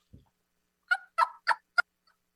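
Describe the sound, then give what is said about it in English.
A person imitates a turkey hen with a plain, higher-pitched hen yelp made with the lips while the jaw stays still, giving four quick, high-pitched yelps in an even rhythm after a soft low thump, fairly loud with silence between notes. “So if you look close to my mouth, the first hen yelp I'm doing is higher pitch, and it's really just a plain hen yelp.”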